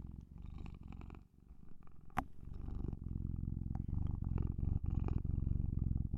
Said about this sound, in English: you're purring so loudly. I wonder if it will get picked up on the microphone. You wanna purr? It would be welcome if so. You want to purr into the mic?